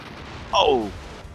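A single video game cannon shot rings out, a short, fairly loud blast with a bright tone that sweeps quickly downward in pitch before fading, over a low steady background hum.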